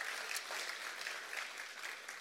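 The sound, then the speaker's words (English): A crowd claps together to honor the senior pastor, a steady, dense wash of applause, many hands overlapping into a continuous crackling roar that holds at an even level throughout. “Will you give our senior pastor some honor just for a moment? Give them a hand clap.”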